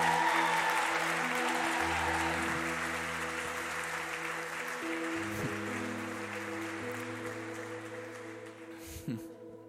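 Sustained audience applause fills the room, a dense wash of many hands clapping at steady loudness throughout, with faint sustained organ-like tones humming underneath and a few muffled voices near the end.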